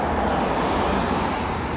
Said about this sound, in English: I don't think you're going to hear me properly. There's like a lot of cars driving by. Yeah, guys, I'm at some dual carriageway trying to find my way home.